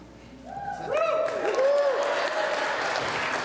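An audience at Woodburn Baptist breaks into applause that swells within the first half second and holds steady, with a few rising whoops and cheers riding over the dense clapping.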